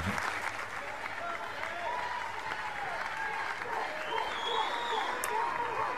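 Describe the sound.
A crowd at a baseball game cheers and applauds steadily throughout after a kid batting is hit in the head, a dense wash of clapping with raised voices and shouts rising above it, sounding like a large audience at a stadium.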